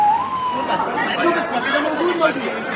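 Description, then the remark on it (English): An ambulance siren wails steadily, partly masked by a busy crowd of people talking over it, the tone holding and wavering throughout; ambulances in a convoy carrying severely wounded Palestinians to a field hospital and to hospitals in northern Egypt. “the first Palestinians, 81 of the most severely wounded, those desperate enough for urgent surgical intervention, taken one by one in a convoy of ambulances to a field hospital set up a few miles away and to other hospitals in northern Egypt.”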